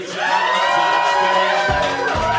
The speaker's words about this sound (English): Yeah! Listen to that crowd. Oh my God, they're still going.